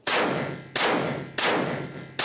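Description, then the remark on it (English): Four loud revolver shots fired in quick succession by fanning the hammer, pulling and releasing the trigger between fans, roughly evenly spaced, each a sharp crack trailing into a long ringing decay. No one speaks. “And that included pulling the trigger, releasing the trigger, fanning the hammer, pulling the trigger, releasing the trigger, and fanning the hammer, but doing it pretty quickly.”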